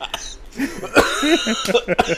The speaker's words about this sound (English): Whoa, man. Oh, that was a legitimate cough. Hang on.